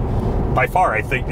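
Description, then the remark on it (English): A pickup's diesel engine drones low and steady under mild acceleration, heard from inside the cab, with a lot of air sound and a little extra rattle, while a man's voice talks over it in the second half. “we are in a mild acceleration here. I think that's noisier than the Cummins.”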